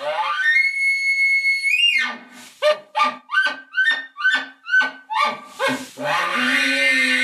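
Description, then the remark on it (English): An elk bugle blown on an easy-to-use game call rather than a diaphragm call: a long, high, whistling scream, then a string of about seven rhythmic grunting chuckles, ending in a raspy, breathy tone. No talking. “So this is going to be a bugle that you are not using a diaphragm.”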